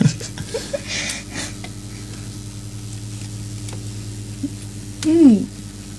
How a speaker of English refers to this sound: Is that a hairy plane going over? Yeah. Oh, that's right. Can you hear that aeroplane too? Oh, yeah.